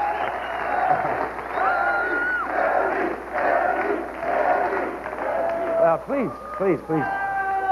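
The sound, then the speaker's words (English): A large audience, primed to laugh, stand up and cheer every time Chevy does something funny, cheers and whoops continuously, a dense roar of many voices with rising and falling shouted whoops standing out near the end. “Yeah, you can tell the audience has been primed to, like, oh, just laugh and stand up and cheer, you know, every time Chevy does something funny.”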